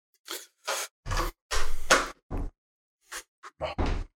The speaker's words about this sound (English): I'm going to close the door.